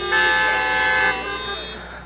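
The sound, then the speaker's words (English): Several car horns honk together in a loud, sustained blast lasting about a second, then trail off into a fainter lingering tone and background murmur. “Honk your horn if you've ever seen one.”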